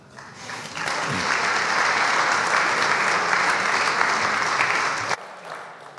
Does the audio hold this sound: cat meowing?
no